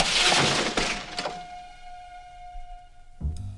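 Glass shatters loudly in a bright, crashing burst, with a couple of sharp follow-up cracks and tinkling debris, then a long ringing hum and a dull thump near the end, as Roger the rabbit crashes through the blinds and out an office window.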